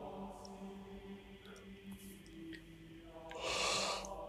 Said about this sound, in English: See, this actually is making me want to yawn. I know. It's fucking sleep. And actually yawn to the song that they're doing.